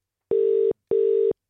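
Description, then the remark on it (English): A telephone ringback tone on an outgoing call: two steady, mid-pitched electronic rings, each lasting about half a second, separated by a short gap of silence. “There's our first ring.”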